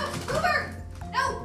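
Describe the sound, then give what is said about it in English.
A woman screams at her dog after bathing it, in two loud, high-pitched bursts, the first longer and wavering, the second shorter after a brief dip. “This is a feature of my sister after she bathed her dog. And now she is screaming at him.”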